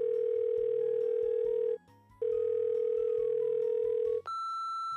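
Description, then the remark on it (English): An outgoing phone call rings on the line: two long, steady electronic tones separated by a brief pause, then a higher-pitched tone takes over, with a faint low murmur underneath. “I'm going to call Sierra.”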